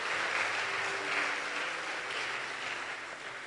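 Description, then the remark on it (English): A crowd claps together in a dense, steady burst of applause, swelling slightly early on and then holding a continuous rattling wash for a few seconds with no voices over it. “Oh, are you clapping?”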